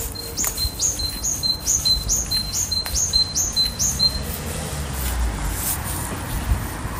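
A Great Tit in Marino sings a squeaky two-note phrase like a squeaky bicycle pump, repeating it about eight times in a quick, even rhythm, clear, then falls silent over a low outdoor rumble.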